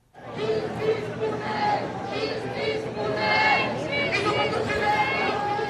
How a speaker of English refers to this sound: Thousands of people have been marching through the streets of the Paris suburb of Nanterre to remember the teenager.